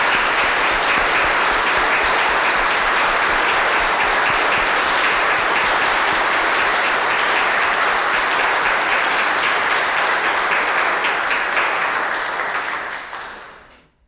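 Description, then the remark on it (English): A church audience breaks into sustained, loud applause to congratulate new altar servers, a dense wash of many hands clapping steadily for about twelve seconds before quickly fading out. No one speaks over it. “So, dear congregation, shall we with a hand of applause congratulate our new altar servers?”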